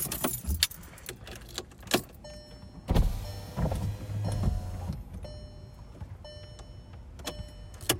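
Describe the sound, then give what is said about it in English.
A car's power window motor whirs as the glass rolls down, a steady mechanical hum lasting a couple of seconds, surrounded by clicks, thumps and a faint jingle of keys inside the cabin of a car holding five people. “Can you roll the window down, please? Because it's not going down.”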